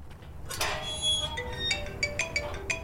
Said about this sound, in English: The gate sound isn't from here, though. The Maryhill Cemetery does have a metal gate, but the sound it makes while opening and closing just didn't work very well for this moment. So I found and used a different gate recording instead.